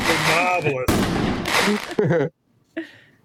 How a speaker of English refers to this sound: Give him the pop and circumstance of all the fireworks, everything.